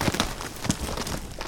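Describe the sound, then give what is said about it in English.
Horse hooves thud and crunch over rough hillside ground in an irregular, uneven gait as a rider herds cows across open range, moderately loud, with a faint rustling background and no voices. “The Elsingas started riding like this to keep their cows safe from wolves”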